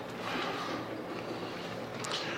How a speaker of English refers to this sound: I'm going to go to 2 Corinthians 5, 7, and 8. And bear with me, I am doing the 2 Corinthians. This really is a neat little... And as you find it and turn your pages, you can hear my pages turning here.